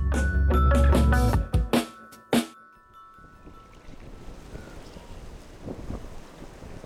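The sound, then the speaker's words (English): Wind gusts across an open marsh at the Shiawassee River State Game Area in Michigan on a windy April day, opening with a few loud, buffeting bursts and then settling into a steady, low rushing noise with no one speaking. “On a windy April day”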